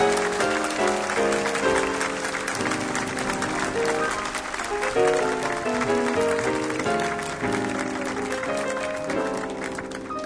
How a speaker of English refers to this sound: Have a nice round of applause for …, please.